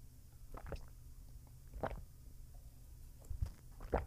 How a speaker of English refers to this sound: So I'm going to have a drink of cold water.